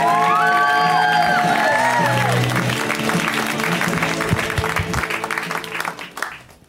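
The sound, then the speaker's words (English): A live comedy show audience claps and cheers loudly to welcome the next comic, with whoops and high shouts rising over dense, steady applause that thins out and fades near the end. “Start that clap. Give her some love, okay?”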